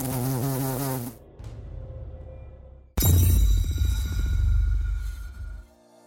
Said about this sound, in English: A sound nearly as loud as Aunt Mary's snoring. The sound of large wings fluttering in the air.